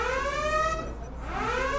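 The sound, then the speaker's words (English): A security alarm wails continuously, its harmonic-rich electronic tone dipping and rising again in a slow pitch sweep, steady and loud with no voices over it. “Alert. Unauthorized fictional incursion on this plane. Alert. Security countermeasures activated.”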